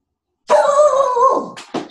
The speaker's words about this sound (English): Speak of the devil. Or if you don't want a dog that barks a lot, don't get a breed that barks a lot.